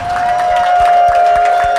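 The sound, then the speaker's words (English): A crowd claps and cheers loudly and continuously, a dense wash of overlapping hand claps with shouts mixed in and a steady whistle-like tone running through it. “And please clap for my best friend,”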